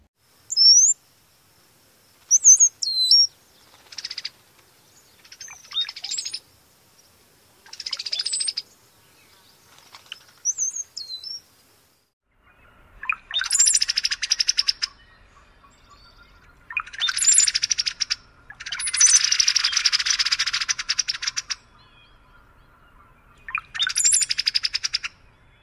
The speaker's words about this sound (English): Pairs frequently duet, and here are a few recordings of the male song followed by the female song with the pair singing together.